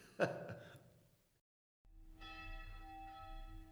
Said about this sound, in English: And there's the bells of Nikolaihof.